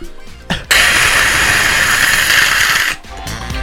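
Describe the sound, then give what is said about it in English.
A harsh, steady electronic whine like a dentist's drill, meant as an applause effect, cuts in loudly for about two seconds, then drops away to a quieter buzzing hum. “Mine just sounds awful, like a, mine just sounds like a dentist. Yeah, I was going to say. This is the applause.”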